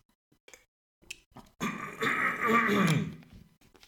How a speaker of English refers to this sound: Excuse me, sorry about that. I don't know what's going on in my throat. Hold on, maybe I'll have some water. I shouldn't be trying to clear my throat directly into a fucking microphone.